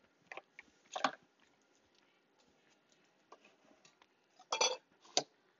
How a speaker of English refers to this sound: I'm also eating mint chocolate right now. It's really yummy. I have something good to talk about. Let me finish chewing. 1 second.